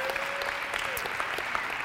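Steady applause from a church audience as a couple is invited up to be honored, a dense wash of many hands clapping at an even, sustained level throughout, with no voices standing out.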